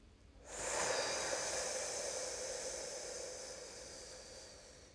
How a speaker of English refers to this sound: Put your hand on your belly. Try to get the breath down in there. So let's breathe in slowly. Feel that expand. Hold. Again, breathing out through your mouth slowly.